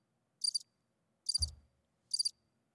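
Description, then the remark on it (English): Crickets chirp in three short, evenly spaced trilling bursts, fairly quiet, with a dull low thump landing under the middle burst. No one speaks. “close the back door, bro. Fucking crickets allowed tonight, man.”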